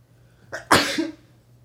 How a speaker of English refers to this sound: Sorry. That was a. You know why I sneezed like that? Cause I sense fakeness.